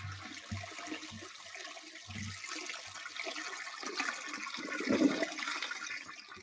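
A toilet flushes, its rushing, gurgling water building steadily over several seconds to a loud swirl near the end, with no voices.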